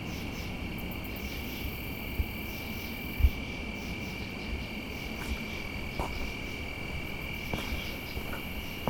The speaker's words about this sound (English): It's got quite a lively soundscape here amongst the crickets, grasshoppers, these other loud insects that I think are probably some kind of katydid. Occasional chorus frog.